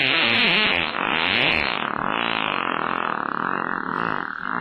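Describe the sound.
A long, loud armpit fart noise, buzzing and warbling continuously for several seconds with a wet, fluttering tone and no talking.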